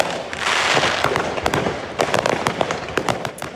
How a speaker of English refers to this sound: A fire broke out in a container storing fireworks, sending explosions and light into the sky. Firefighters scrambled to keep the fire from spreading because the container was in a parking lot located between two fireworks stores.